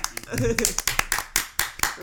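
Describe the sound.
A quick run of hand claps, about a dozen crisp strikes in a fairly steady rhythm, with a brief voice murmuring underneath near the start.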